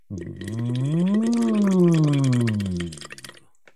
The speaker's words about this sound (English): Blow some bubbles into that water. Next, sing through that straw.